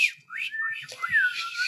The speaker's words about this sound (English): I tried to whistle for you. Yeah, I can't whistle. You can't whistle at all? No. Wow. That's it. Nope. It's like airy.